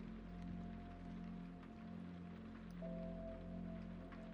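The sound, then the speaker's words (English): Soft, steady rainfall patters continuously at night with faint scattered drops, backed by a constant low mechanical hum. The whole scene is quiet, with no voices. “But no matter the differences, they were all united by the soothing sound of the rain.”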